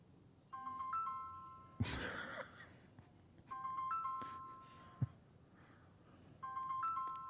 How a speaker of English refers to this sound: The ringtone's kind of ruining the whole sleeping thing.